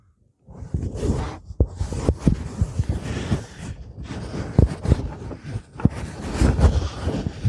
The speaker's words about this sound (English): Are you really recording me farting around with a mic?